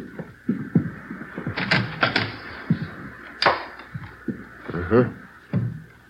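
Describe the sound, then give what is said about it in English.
A bedroom door opens with sharp latch clicks and a brief rattle, several quick knocks of the handle and frame, while low voices murmur around it. “Yeah, bedroom's over here, through this door.”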